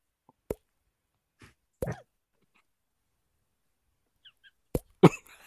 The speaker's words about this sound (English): That's it. Just the little water drips. That's it.